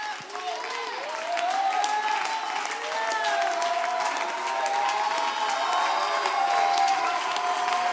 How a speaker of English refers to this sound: You wave your hands. You clap your hands. You shout and you shout.